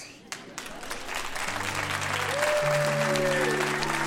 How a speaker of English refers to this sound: Ooh, enthusiastic cheer.